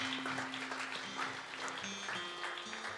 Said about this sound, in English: Congregation, would you give him a hand clap this morning?